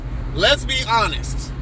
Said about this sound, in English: Traffic, y'all. Y'all know I'm in the car and y'all in the car with me.